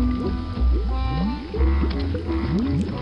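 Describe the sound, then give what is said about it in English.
An overdone toxic sludge sound effect for a polluted river in a film: thick, exaggerated bubbling sludge gurgles continuously, with croaking, warbling gloops rising and falling in pitch and two deeper, heavier surges of low rumble. No one speaks. “Again, they even have like overdone sound effects for the river, I guess because the river's polluted. It's the toxic sludge SFX.”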